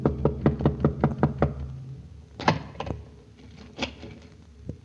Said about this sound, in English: And then I sat and waited. A few minutes before midnight, the knock came.